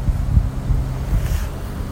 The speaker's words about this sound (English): Come on, Zay-Zay. Good girl. Let's go over the river. Water's moving. Spring's coming, y'all.